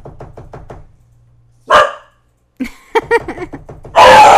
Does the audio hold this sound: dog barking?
yes